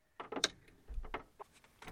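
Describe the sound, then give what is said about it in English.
A few quick clattering knocks followed by a low, dull thump as a door is pushed shut, then a couple of fainter rattles as it settles. “Close the door.”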